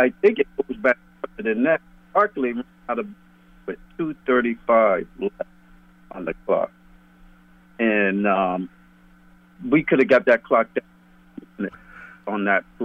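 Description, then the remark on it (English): A man, a coach calling in to a radio show, talks over a thin, band-limited phone line, his speech chopping in and out in short clipped bursts with abrupt dropouts, over a steady low electrical hum. “Give us a call back, because you're breaking up on this end here.”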